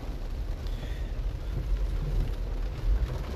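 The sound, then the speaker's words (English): Sudden heavy rain with big drops, which started about five minutes earlier, pounds down in a dense, steady roar over a deep, constant rumble while driving out of a gas station by a highway, swelling slightly toward the end, with no voices. “This rain is crazy out of nowhere. The drops are huge, but it's good.”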